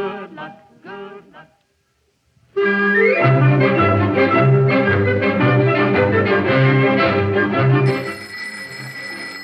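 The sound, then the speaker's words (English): A telephone rings in a few short, bright bursts, then after a brief silence a loud, sustained ringing tone takes over and continues steadily to the end. “Oh, dear. It's the phone.”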